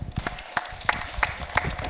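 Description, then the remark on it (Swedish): An athletics audience applauds high jumper Sofie Skog of Göta friidrott, competing at home: irregular claps crackling together at moderate loudness, with a few sharper claps standing out from the patter and no voices over them. “En applåd kanske för Sofie Skog.”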